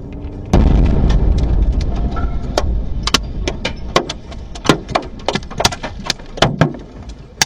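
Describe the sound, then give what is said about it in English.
A sudden, loud missile explosion booms on a busy street in Dnipro, Ukraine, with a deep rumbling roar, followed by a scatter of sharp cracks and clattering impacts as debris crashes down on cars. “They capture a dramatic explosion on a busy street in the city of Dnipro.”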